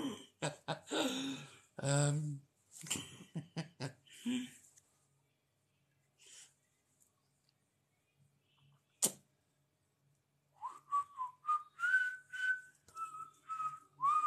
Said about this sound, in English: I don't know why I'm whistling that, but anyway.